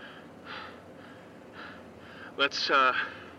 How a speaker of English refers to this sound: 3 minutes of rapid breathing are recorded.